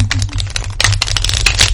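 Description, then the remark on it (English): A deck of cards being shuffled, a dense run of quick crisp flutters and clicks over a low steady hum, with no voices. “Is there a certain amount of times that you shuffle or anything?”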